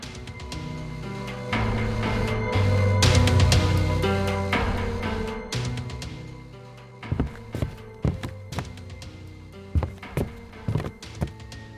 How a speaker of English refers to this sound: There was the sound of hurrying feet, subdued voices that told nothing, strangling gasps from behind the connecting door, the ring of horses' hooves on the frozen ground outside.